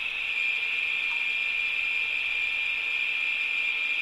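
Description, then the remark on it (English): Steady dial-up modem connection static as a computer connects to the internet, a loud, unbroken hiss with a bright, piercing upper band, holding constant for about four seconds without voices. “You heard the dial-up. You heard the connection. Static.”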